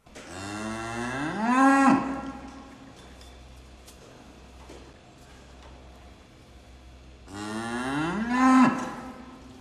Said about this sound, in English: Now, I don't know if you get it in the sound, but the aggression in her eyes, because she's not an aggressive animal, Tara, but that moo is directly at the camera saying, get lost.